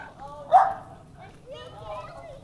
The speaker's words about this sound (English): Oh, you got dogs over here. Look, you got dogs. So we all have these. The dogs are all about the same size.